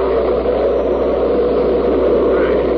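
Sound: storm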